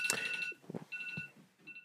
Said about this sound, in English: It's on airplane mode. Is that for something important? My 3 o'clock alarm. Is that... Do you have to go or something? Or? No, it's just the third hour. It's the hour of prayer, 3 o'clock.